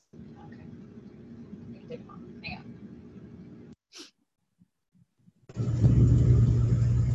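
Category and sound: vehicle, car engine running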